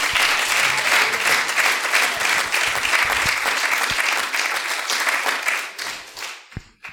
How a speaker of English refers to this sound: Would you clap your hands unto the Lord today?